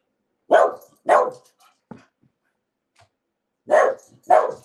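The speaker's dog barks four times, loud sharp woofs in two quick pairs separated by a pause of near silence, with no voices.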